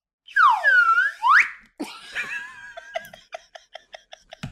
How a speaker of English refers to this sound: And that is, of course, in tribute to the slide whistle that scores the car jump in The Man with the Golden Gun, the worst moment in the history of Bond films.